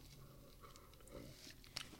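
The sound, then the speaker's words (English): A quiet sip from a drink set up on a table: soft wet mouth and slurping sounds, ending with a small sharp click, with no talking. “In fact, I set the so I took a sip.”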